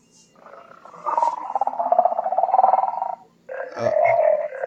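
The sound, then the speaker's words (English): A Casio SK-1 sampling keyboard plays a buzzy, rapidly pulsing mid-pitched tone in two phrases, a long warbling one and then a shorter one after a brief gap. It is fairly loud, with no talking. “Yeah, it's a sampling keyboard. It's the SK-1.”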